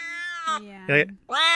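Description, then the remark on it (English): Three quick cat meows in a row from a cat piano app on a phone, each a short tonal mew with a distinct pitch, like notes played in sequence, clear with no other sounds around them. “That's so I could not only just have it for my iPad, but I could also, in extreme moments of duress or, you know, when you're just feeling down and you need a little lift, you just turn on your Cat Piano app and you just, that's right from my phone.”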